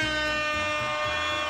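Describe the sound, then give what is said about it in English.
A loud siren at a surf contest on a beach blares in one long, unbroken blast, holding a steady, brassy pitch with a rich buzzing tone over a low, pulsing rumble. “When the siren sounded and the crowd on the beach erupted”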